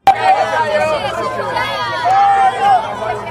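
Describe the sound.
A crowd of people outside a venue cheers for Vice President Lai in a loud, continuous roar of overlapping voices, with a few higher whoops or whistles rising above the din over about three seconds.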